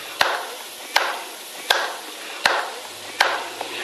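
Five sharp hand claps land at a slow, steady pace in a grand old town hall, each crack trailing off in a lingering echo. No one speaks, and a faint low hum creeps in near the end.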